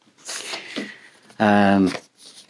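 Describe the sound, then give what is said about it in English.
A vinyl record on Cherry Red's Purple Records imprint slides out of a paper sleeve with a dry, papery rustle and scrape; a loud voiced burst interrupts midway before a little more rustling. “And I could say, well, here's one, just to show you that it's not, it is completely random.”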